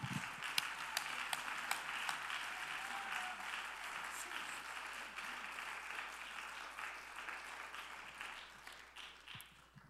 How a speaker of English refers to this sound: Somebody clap your hands up.